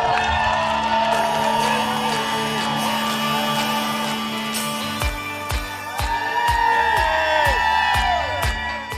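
A loud outdoor crowd cheers and whoops continuously, many voices rising and falling together, with steady rhythmic clapping or beats joining in during the second half.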